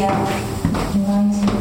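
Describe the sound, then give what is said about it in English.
A door leading into the stacks of a library opens: a short click of the latch, then a brief steady creak as it swings, with low murmuring voices in the background. “So now, this door enters into that stack.”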